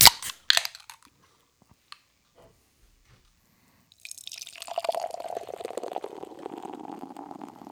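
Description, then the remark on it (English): Beer pours into a glass: a few sharp clicks and a clink at the start, a short quiet pause, then a steady, fizzy gurgling stream of orange-tinged beer that runs for several seconds. “Beer is poured out.”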